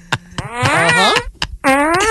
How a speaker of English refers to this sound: welcome to Fart Radio. Cleared the air on that. You gassy.